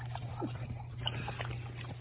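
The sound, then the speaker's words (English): Dobby, a 17-year-old dog, laps water in soft, wet, irregular slurps over a steady low electrical hum, with no one talking. “Sorry, it takes a minute for him to get his water.”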